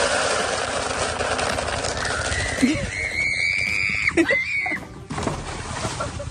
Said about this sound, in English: You're going to hear a scream of a woman. She's going to try and stay on a galloping horse, and then you're going to hear a splash. Okay. The woman is being dumped into the water, a water trough, by the horse.